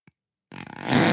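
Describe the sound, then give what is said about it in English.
A tiny click, a short pause, then a person chokes on a sip of water: a sudden wet, sputtering burst, rough and harsh, growing louder and holding for about half a second. “That what you heard come out of my mouth was I choked on my water.”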